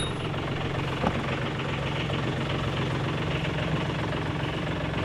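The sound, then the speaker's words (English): A small boat engine idles steadily in an inner harbor, a continuous low chugging drone with a faint knocking rhythm and no voices, holding an even level throughout. “Malcolm pulled his boat up to meet me in the inner harbor”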